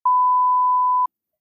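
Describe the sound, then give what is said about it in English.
A single steady censor bleep lasting about a second, a pure, loud electronic tone that starts and stops abruptly, with no voices audible around it. “I'll beep that out to increase mystique.”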